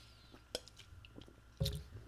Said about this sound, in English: Hold on, I'm going to sip this Coke.